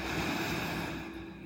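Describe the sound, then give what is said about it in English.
A slow, steady breath drawn in through the nose during a guided breathing exercise, a soft airy hiss that holds for over a second and eases off slightly at the end, with no talking. “Take a deep breath in through your nose and out through your mouth.”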